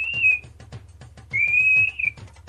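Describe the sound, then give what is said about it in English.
A person whistles a steady, piercing high tone imitating a telephone signaling tone: a short burst, a pause, then a longer held note, over a faint rhythmic low thumping. “can you whistle 2600?”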